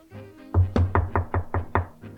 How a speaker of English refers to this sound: Pick a random door and knock. Yep. Okay. There's no answer.